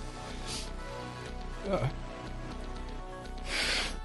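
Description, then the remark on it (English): A short, breathy nose blow honks near the end, preceded by a brief snuffly burst, with a low background hum throughout. “Man, you gotta blow your nose when you gotta blow your nose, right?”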